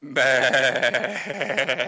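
A goat gives one long, wavering bleat, loud, its quavering cry lasting nearly two seconds with no talking around it.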